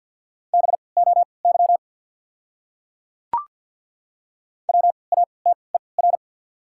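Fast Morse code beeps at 50 words per minute with 3x character spacing, in a steady, mid-pitched tone, spell out a common word, then a single sharp click, a pause, and another quick burst of dits and dahs spelling a second word.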